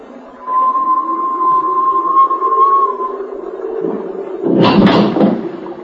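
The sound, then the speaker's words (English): A bedroom door being opened into a corridor during a storm: a long, thin, steady creak over a low rumble, then a short, loud clattering knock near the end as it swings and settles. No one speaks. “As I opened my door, I heard a distant whistle.”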